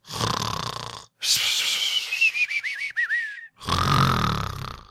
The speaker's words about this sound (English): Yep, I do feel like I am getting better because the snoring is not as great as it has been.